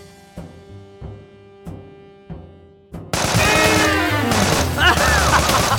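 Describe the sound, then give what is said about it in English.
Evenly spaced single gunshots crack over a low steady hum, then a sudden loud barrage of dense, rapid gunfire erupts, laced with whining, sweeping tones as the shootout with police intensifies, in the Jabberwocky Audio Theater drama Quorum, The Gambler's Tale. “Man, I live for shooting cops!”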